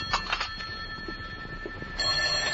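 An old-fashioned telephone rings in an apartment in Hartford at 10:30 in the morning, in two bursts of rapid, jangling bell tones separated by a short pause, fairly faint and set against a thin hiss, with no one speaking.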